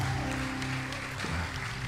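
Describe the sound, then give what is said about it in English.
An audience claps steadily as a hand clap of praise to God, a dense and continuous patter of many hands at an even, fairly loud level, with a low sustained musical tone humming underneath. “And everybody said, oh come on, everybody said, oh, come on, let's give God a hand clap of praise one more time.”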